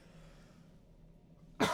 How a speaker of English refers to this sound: Did you pick that cough up there, by the way?